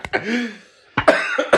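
A person coughs after drinking vodka: one harsh cough with a strained, wheezy tail, a brief pause, then a quick cluster of rough, sputtering coughs, loud and alone without talk.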